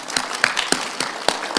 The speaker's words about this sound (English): Let's just give her some applause.